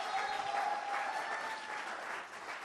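An audience claps steadily, applauding a guest, a dense, even wash of many hands that holds at a moderate level for a few seconds and begins to thin toward the end.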